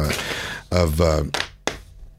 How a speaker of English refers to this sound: Yeah, slow clap it out.